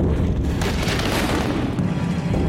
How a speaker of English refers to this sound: And that explosion was actually worse than the explosion on the Grand Camp. It shot flames over 3,000 feet into the air. Devastation was unbelievable. It really did look like an atomic bomb had gone off here.